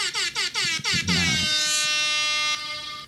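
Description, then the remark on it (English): Loud, blaring air horn hits: four quick stuttering blasts followed by one long sustained honk that fades out, the classic hype sound effect, with no talking. “It is rap air horn time.”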